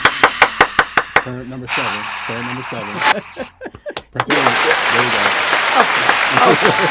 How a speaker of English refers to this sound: Can we get an applause? What applause? All is well. Do we have an applause button? No, God damn it.